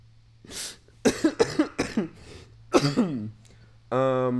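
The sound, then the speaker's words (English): A fit of coughing: a breathy start, then a quick run of several harsh coughs, a second shorter cluster, and a drawn-out voiced throat sound at the end. “Are you coughing in the video as well?”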